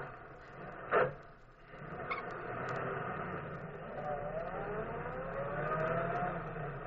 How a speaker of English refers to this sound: Now I'll start the car.